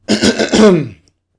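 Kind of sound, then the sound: human body sound, throat clearing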